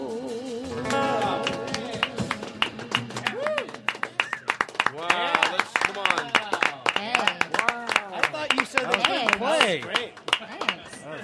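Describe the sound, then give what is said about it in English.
A room of men clapping in a steady, irregular patter of sharp claps, accompanied throughout by loud voices cheering and calling out over the applause. “Full of men clapping for me.”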